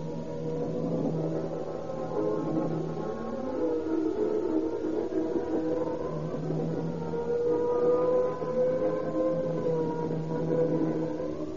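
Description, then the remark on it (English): A fire engine speeding through shadowed streets sounds its siren, wailing continuously, its pitch sweeping up and down in long rising and falling cycles over a steady low engine rumble, loud throughout with no voices. “Once again, the roaring, screaming engine speeds through the shadowed streets with men fleeing through them like insects.”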